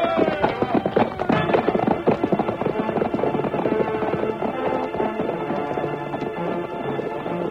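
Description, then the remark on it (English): Rapid hoofbeats of a galloping white horse drum steadily beneath loud, sweeping orchestral music, the rhythm continuous and driving throughout. “swiftest of all was the masked man's white horse, whose hoofs thundered against the earth”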